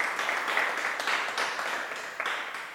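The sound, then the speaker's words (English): A room full of people applauds the $3,550 given so far, a steady wash of clapping that holds at an even, moderate level for a few seconds without any voices over it. “Those that are in the room, yeah, we can clap right now.”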